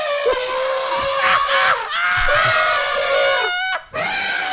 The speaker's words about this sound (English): That motherfucker yelling at you. Yo, that motherfucker screaming at you. And then that fucking elephant just walked off into the sunset.